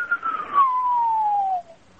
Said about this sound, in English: And so what you can hear when you're listening to a radio, you'll often hear what are called whistler modes. It'll sound like someone whistling but with a pitch changing.